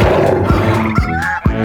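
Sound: tiger roar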